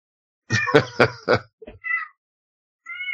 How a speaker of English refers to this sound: Meow. Dude, that cat's hungry. Oh. No, she wants attention.